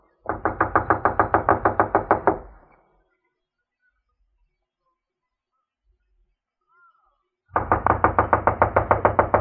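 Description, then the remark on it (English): A rapid, loud series of knocks on the back door of a run-down, unoccupied house, then several seconds of silence before a second equally quick burst of knocking. No voices are heard. “I'll knock.”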